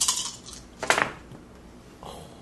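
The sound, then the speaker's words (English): Dice clatter and tumble across a hard tabletop in a few short bursts of rattling clicks, fairly crisp, with quieter settling taps at the end and no voices. “Damn, that's going to be a no from those dice, dog.”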